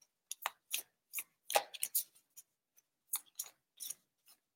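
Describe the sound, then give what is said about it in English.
Cards being shuffled: irregular bursts of crisp, papery slaps and riffles, some clustered and some spaced apart, fairly quiet, with no talking. “And as I'm shuffling, I just wanted to say one thing before I forget, of course.”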